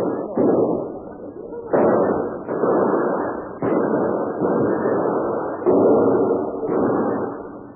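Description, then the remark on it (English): A loud, sustained barrage of gunfire in a shootout at a warehouse, with sharp shot onsets every second or so over a continuous roar of rapid firing, sounding muffled and dull with no voices. “Hold your fire.”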